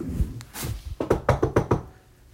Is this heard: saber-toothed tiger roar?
no